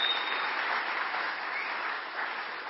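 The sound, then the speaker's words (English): A crowd applauds steadily for a pastor during a church worship service, a dense, even wash of clapping at a moderate level that holds without pause for a few seconds, with no voices over it. “Give Pastor Angel a round of applause.”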